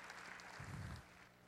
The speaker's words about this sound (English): Wasn't that awesome? Give the Lord a hand clap, a hand praise. Amen.